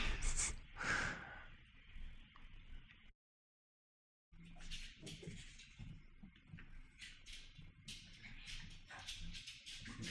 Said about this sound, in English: Sorry, my dogs are like wrestling under my desk. I love it.